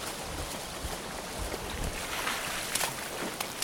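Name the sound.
rushing river water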